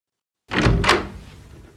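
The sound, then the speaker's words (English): A doctor's office door with a picture of a foot on it opens as someone goes in, with a short rattle and a solid thud, followed by a brief fading room tail. No voices. “That's a funny kind of dentist with a picture of a foot on the door. Well, I'm going to go in.”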